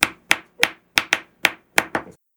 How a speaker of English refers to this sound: Stop drumming.